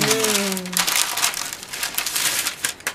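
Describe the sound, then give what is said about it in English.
Steady crinkling of parchment paper being pressed and rolled as dough is rolled out between sheets of it, a dense crackly rustle lasting the whole stretch, with a short voiced hum at the very beginning. “So I stick it between parchment paper because it's just easier to roll out.”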